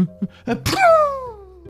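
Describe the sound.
A voice acts out a sneeze for a story character, Doggy, who tried to hold it in: a couple of short gasping build-ups, then a sudden loud, noisy burst that trails off into a long, falling, drawn-out vocal tone. Fairly loud.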